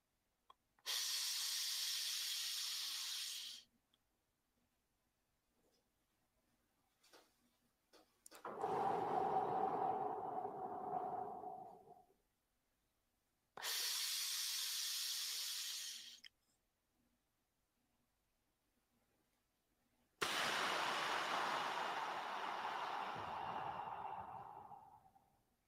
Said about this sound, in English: If anybody wants a good one, I'll do one for you right now. Ready? 5 seconds inhale through the nose, 5 seconds hold, 5 seconds release. Ready?